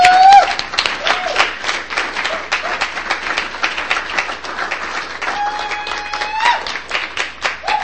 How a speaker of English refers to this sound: please clap so loud and hoot and holler.